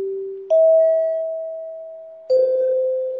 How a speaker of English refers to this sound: So this bit of history comes from the history of the NBC chimes. Now, you're familiar with the NBC chimes.